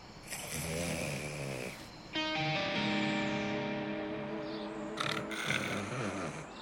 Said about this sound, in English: Just because I'm a baby brother, I gotta share the bed with this snoring-ass motherfucker.